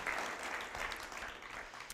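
A crowd applauds steadily, a dense, even wash of many hands clapping at once with no pauses, holding a constant loudness for the full two seconds. No one speaks.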